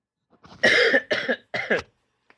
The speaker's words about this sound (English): Sorry, I should just cough first.